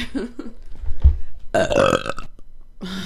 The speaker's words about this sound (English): Classy. Wow, look at how look how loud that registered. Oh yeah, I know. Yeah, that's a fierce burp.